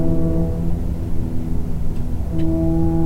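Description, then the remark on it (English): A deep foghorn blares continuously, its low droning tone shifting pitch partway through, loud, with a faint rumble of background noise and no talking. “You know, cable car bells and foghorns.”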